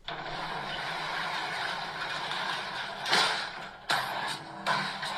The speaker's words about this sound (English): Yeah, he's lifting up a motorcycle with a, looks like a pump, so he's slamming his foot down in order to raise the hydraulic lift for the motorcycle.